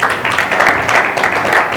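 Steady, dense applause from a sizeable audience as a speaker is brought up to give a testimony, many hands clapping at once in a continuous loud wash with no voices standing out, sustained throughout.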